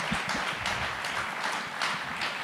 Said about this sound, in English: Let's give him one more big round of applause. Come on, man. Yeah.